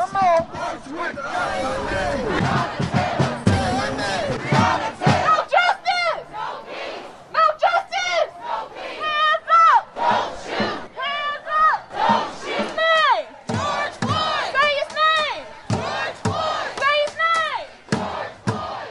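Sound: protest crowd chanting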